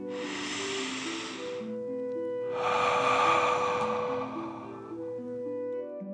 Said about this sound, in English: As you continue to relax in the cozy warm sand, let's take three more deep dragon breaths. Deep breath in and out.